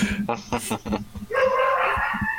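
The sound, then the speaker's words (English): Dogs bark in a quick run of sharp yips, then one breaks into a long, wavering whine, like playful roughhousing. A voice may be faintly present underneath. “Oh my gosh, can you all hear my dogs? Yeah. Oh no. Yeah, they're having fun.”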